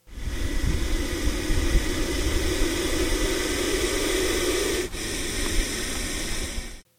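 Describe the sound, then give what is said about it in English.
A puff adder puffs and hisses loudly, a long, breathy rush of air that breaks off briefly near the end before a second forceful puff-hiss follows. No one speaks. “This is what it sounds like when a puff adder puffs and hisses.”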